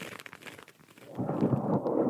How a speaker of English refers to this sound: I think it's just cardboard. It's like she has long fingernails, and she's tapping it on this card, little circle of cardboard.